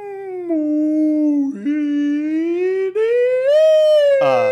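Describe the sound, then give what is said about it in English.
A voice imitates a whale call with one long, loud, drawn-out moan that slowly dips and rises in pitch, breaking briefly midway and ending in a short, raspy burst. “Are you sure you speak whale?”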